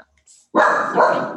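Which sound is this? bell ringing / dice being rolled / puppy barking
puppy barking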